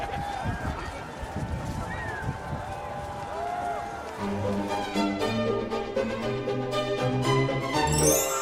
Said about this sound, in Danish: Han anländer till Christiansborgs slott i bil och lämnar i häst och vagn. Som ni hör, folkets jubel.